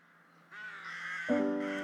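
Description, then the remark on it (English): A magpie, perched at the top of the tallest tree, gives its harsh, grating rattle, a dry chattering that starts abruptly and swells into a louder, more nasal burst near the end, with no talking. “A great tit rings out its call, and the magpie rattles, sat in the finest outfit at the top of the tallest tree.”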